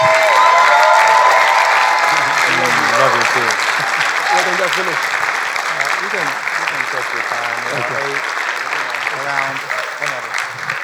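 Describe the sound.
Sustained applause from a crowd welcoming a speaker at Bethel Atlanta, a dense steady clatter of clapping that stays loud throughout, with scattered voices and faint cheers mixed in underneath.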